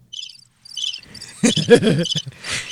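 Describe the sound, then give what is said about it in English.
A cricket chirps in two short bursts of rapid, high-pitched trills, followed by a louder, lower-pitched rustling burst that mixes with the continuing chirps. “Do you know what I hear sometimes when we're in there? Chirp.”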